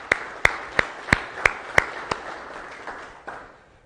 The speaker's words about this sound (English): And I also want to say, let's give a round of applause for everybody in the congregation that still honors Memorial Day and things like that. Let's do that, please.